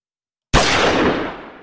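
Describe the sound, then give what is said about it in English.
After a moment of silence, a sudden loud burst of gunfire at a car cracks out, its harsh noisy tail fading over about a second with no voices. “So you hear gunshots.”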